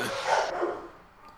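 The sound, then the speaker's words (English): A dog in the back lets out a bark, a single loud burst that quickly fades, with no one talking over it. “Yeah, loud dogs.”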